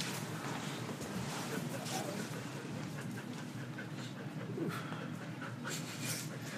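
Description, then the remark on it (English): A dog, Quad dog, sniffs at the microphone: rapid, breathy snuffling bursts that crowd the sound, with a few sharper puffs of air near the end. “Getting some ASMR sniffing. Yeah. Dog sniffs.”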